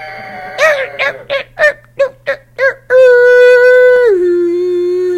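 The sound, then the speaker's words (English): A voice imitates a shower that screams when it is turned on: about eight short, yelping squeals in quick succession, then a loud, sustained shrill tone that suddenly drops to a lower steady pitch and holds. “And the shower screams at you when you turn it on.”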